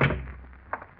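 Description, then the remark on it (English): A door is opened for an arriving visitor with a dull thunk that quickly fades, followed by a faint, short click a moment later. “And you breathe a sigh of relief as you open the door.”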